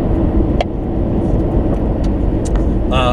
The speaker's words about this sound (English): It's just a diesel truck. It's awful. Yeah, that's what diesel looks like going in there.